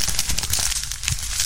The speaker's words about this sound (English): And you heard the crumble of the paper right there, and as it lays in a pile of discarded ideas,